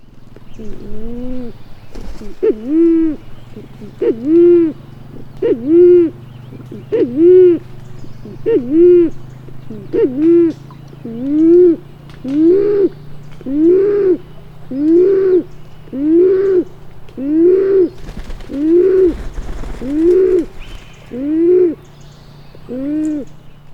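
A band-tailed pigeon gives a long, steady, slow series of deep, hollow coos, about seventeen evenly spaced notes, clear, with no talking and only faint background noise.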